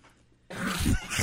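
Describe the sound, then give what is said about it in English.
After a brief quiet moment, harsh, loud coughing erupts, a couple of rough, chesty bursts in quick succession with no talking. “Coughing up a lung over I know. Here.”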